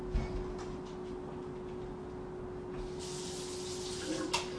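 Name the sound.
water running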